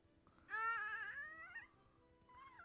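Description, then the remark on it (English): A six-month-old baby, drooling and leaning into the microphone, babbles in a loud, sing-song burst of high vocal sounds that trails off, followed by a shorter, softer coo after a pause. “Not even a toddler, you're 6 months. You're a baby still.”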